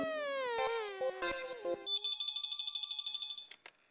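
A phone ringtone chirps as a call comes in, in a quick run of bright, repeated electronic beeps, following a brief swooping melodic tone at the start. Fairly clear, and no one speaks.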